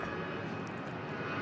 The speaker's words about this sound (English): Oh, plane.